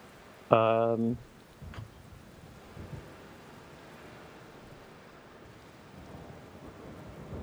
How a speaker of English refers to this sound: You step out into the rain, which is pouring down